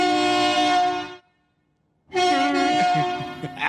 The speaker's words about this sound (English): That almost sounds like a train horn. A little bit, yeah. It's the second poof that like really had like a train horny vibe to it. They're higher pitched.